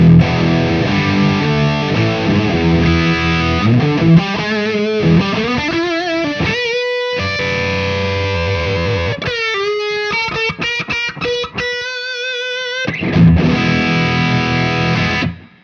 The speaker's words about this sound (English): All right, so that is with all of these boosts going into a distortion.